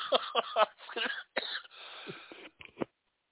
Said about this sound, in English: COVID, still, still dealing with the last couple of days here of some coughing and stuff.